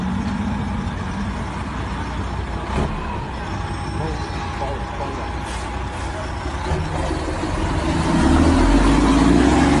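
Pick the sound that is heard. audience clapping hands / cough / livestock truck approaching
livestock truck approaching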